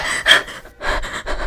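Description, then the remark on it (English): A woman's sharp, startled gasp, followed by a couple of quick, heavy breaths as the shock settles, with no talking. “The ghost runs right through Charlie as she gasps and coils.”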